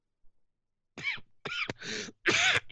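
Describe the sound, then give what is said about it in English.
A short run of about four harsh coughs in quick succession, each an abrupt raspy burst, with no talking around them. “I wanted to go for the cough button. I'll say something while I cough.”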